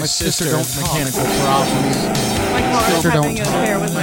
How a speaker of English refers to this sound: Ooh, this is the actual intro song.